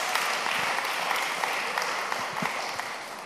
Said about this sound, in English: We just want to welcome you, give you a round of applause, cheer you on. Great to have you here.